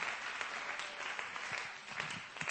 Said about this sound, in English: Praise God. Give the Lord a hand clap of praise tonight. Amen, amen, amen.